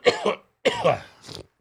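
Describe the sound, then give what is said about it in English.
Two harsh coughs, each a quick double burst, followed by a softer breathy rasp like a throat clearing, with no talking; from a person who has been under the weather with a cough for a few days, COVID negative. “I've had this cough thing.”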